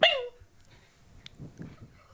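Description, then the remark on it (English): A person vocally imitates a dog's yelp as a sound effect for a dog's tail being run over by a motorbike: one sharp, high-pitched cry that quickly slides downward, fairly loud, followed by low, muffled rustling and breathy noises. “Then I run over the dog's tail.”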